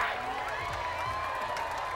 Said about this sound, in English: So I got to give him a two-second applause as well.